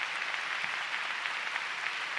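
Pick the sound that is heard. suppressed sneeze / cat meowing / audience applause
audience applause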